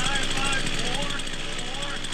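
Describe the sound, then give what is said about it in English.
A chainsaw engine runs steadily at a high, buzzing idle, loud and unbroken throughout, with faint voices murmuring underneath, as an Idaho man walks over 200 feet with the running chainsaw balanced on his chin, setting a Guinness record. “However, an Idaho man just set a Guinness record for walking over 200 feet with a running chainsaw balanced on his chin.”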